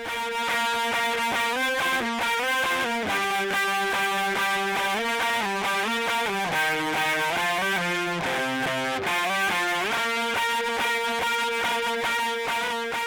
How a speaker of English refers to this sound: Then with the guitar sound, I added even a little more distortion and boosted the treble to give it a really thin sound so it cut through the mix.